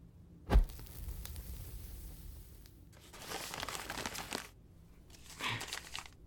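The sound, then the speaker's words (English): A sheet of paper with writing on it crinkles and crumples in a few rustling bursts, starting with a sharp snap and followed by longer crackly stretches that sound like tearing. Nobody speaks. “Burn the paper.”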